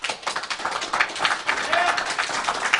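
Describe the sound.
A small group of people clap their hands together to vote, in a brief, steady burst of applause lasting a few seconds, fairly loud, with faint voices mixed underneath.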